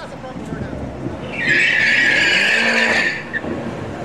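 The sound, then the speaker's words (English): A car's tires squeal loudly in a burnout in the water box at Palm Beach International Raceway, producing a lot of smoke: a steady, high screech that rises abruptly, holds for under two seconds, then cuts off, over engine rumble and faint voices. “So he does a burnout in the water box.”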